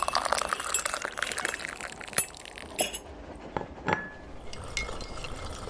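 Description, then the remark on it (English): Teacups and saucers clink together as tea is served on a train, a cluster of bright porcelain taps with a soft pouring wash early on, then a few sharper isolated clinks. “Ladies, tea is served.”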